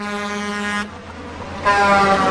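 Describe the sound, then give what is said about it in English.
A truck horn sound effect: two loud, deep blasts of a truck air horn, the first about a second long and the second following after a brief gap, each sustained and brassy with no one talking. “you got a truck driver sound effect?”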